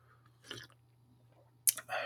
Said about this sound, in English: And that's me taking a sip out of my Fanny Farkle's mug.